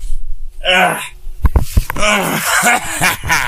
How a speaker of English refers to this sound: Oh, let me blow my nose.